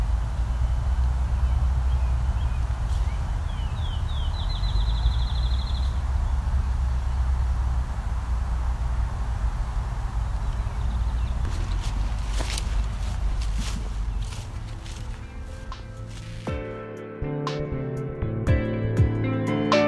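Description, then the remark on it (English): A field sparrow in a field sings once: a high, whistled series of notes that speed up into a quick trill, over a constant low rumbling noise. Clicks and music follow later. “So now that we're in the field again, you can hear some field sparrows very clearly.”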